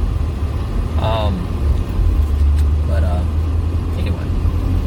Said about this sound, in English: And clearly this car is. It's an SUV.